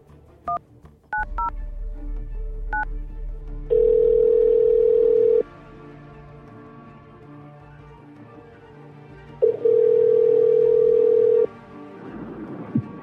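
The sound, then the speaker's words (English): A handful of quick keypad beeps as a phone number is dialed, then an outgoing call's ringback tone: two long, steady buzzing rings separated by a few seconds of quiet line hiss, clear, no one speaking. “We are going to try and call it.”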